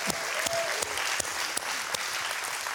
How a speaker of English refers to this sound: Number one, we're going to give a hand clap for all those that have come back for the first time from COVID quarantine today. We're going to give them a hand.